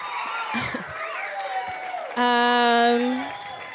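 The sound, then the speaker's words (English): An audience cheers, a dense roar of voices with whoops rising and falling, topped by one loud, sustained shouted cheer near the end before the noise begins to settle. “When they stopped cheering, I was gonna be like, he gay as fuck.”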